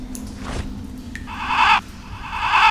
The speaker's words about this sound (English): Oh, hey, there's a little cheesy bird on my shoulder here.